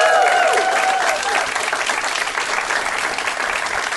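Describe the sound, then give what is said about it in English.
A big round of audience applause for the Glee Club comedy venue, dense and steady clapping from a large crowd that holds at full strength for about four seconds, with a brief whistle-like tone near the start. “Could we have a big, massive round of applause for the Glee Club?”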